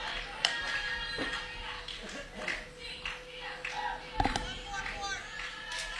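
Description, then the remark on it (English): The Lady Hornet team cheers and yells during a game, with many overlapping high voices shouting in a steady, busy stream, broken by a couple of sharp claps or taps. “Here in the background, you hear the Lady Hornet team always cheering, yelling.”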